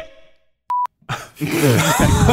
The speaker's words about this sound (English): What was that beep? You have a bleep button? What was that beep? So you can just bleep us like on the air. I accidentally hit the bleep button.